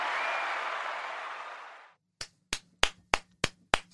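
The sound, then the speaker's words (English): A canned applause sound effect played from a soundboard: a dense wash of crowd clapping for about two seconds that cuts off, followed by six sharp, evenly spaced single claps. No one speaks. “I have applause built into my soundboard, and we're doing some applause for that.”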